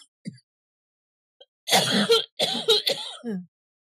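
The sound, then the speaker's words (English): A loud burst of harsh coughing and throat clearing, three or four rough hacks in quick succession after a couple of faint small sounds, with no talking. “On how to cough, how to breathe, and not cough while doing a podcast.”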